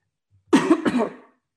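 A short burst of coughing and throat clearing from a person who has been talking a lot, two rough, breathy pulses lasting under a second, with silence before and after.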